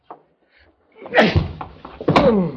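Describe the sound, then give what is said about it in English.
Two heavy punching blows land on a man about a second apart, loud, each a dull thudding impact with a rough, scuffling tail; a faint tap comes just before them. “I've never seen a guy that liked being hit so much, or that I liked hitting so much.”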